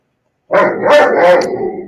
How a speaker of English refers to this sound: Dog. Sounds like a sad bear.